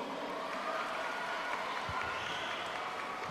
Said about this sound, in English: Come on, a round of applause for the Muslim NGOs.